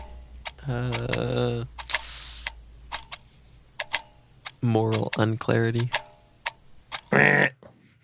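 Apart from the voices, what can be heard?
ticking clock countdown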